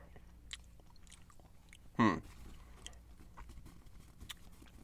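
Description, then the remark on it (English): Quiet mouth noises of someone chewing a bite of cheese and sipping wine, with soft wet clicks scattered throughout and one louder, brief crunch or bump near the middle. “So a little bite of cheese.”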